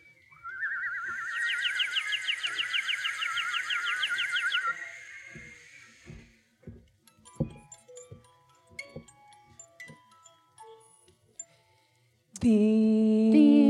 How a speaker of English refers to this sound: And the three little birds who had told the king the truth even today go on singing their triumphant song.